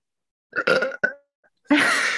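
A loud, drawn-out burp rumbles in a couple of croaky bursts, followed by a short pause and then a sudden rush of breathy noise.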